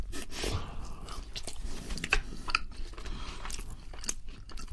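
Steady, moist chewing of Burger King fast food with several crisp, crunchy bites and sharp clicky mouth sounds, continuing without pause for a few seconds at a moderate, even level with no talking.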